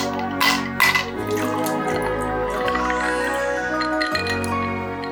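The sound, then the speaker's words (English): A couple of sharp glass clinks near the start, then trickling, dripping liquid as a gin and tonic is poured and mixed, over a steady humming tonal background with no talking. “Before we do, it's time to whip out the tonic screwdriver.”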